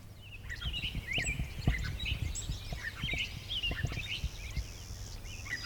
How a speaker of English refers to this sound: Oh, clay-colored sparrow.